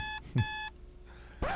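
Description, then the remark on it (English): An alarm clock beeps in two quick, loud bursts of harsh electronic tone on a Tuesday morning, followed by a brief lull and a soft thump. “I couldn't find my alarm clock for some reason.”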